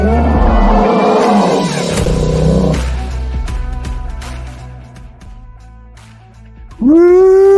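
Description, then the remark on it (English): A loud, deep bear roar opens with a rough, growling blast lasting a couple of seconds, then fades into lower rumbling before a sustained tonal whine cuts in at the end. “Love that roar every week. Every week. You got to hear the roar.”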